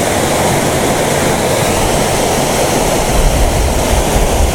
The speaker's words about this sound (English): You know, maybe I'll just leave this waterfall. I've got lots of waterfall pictures.